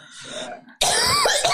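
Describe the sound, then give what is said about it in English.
A harsh cough bursts out suddenly after a quieter, muffled throaty moment, ending in a rough, raspy rasp like someone clearing their throat. “Sorry, I don't like want to cough in your face there.”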